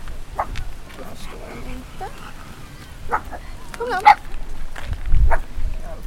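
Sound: dog barking and yipping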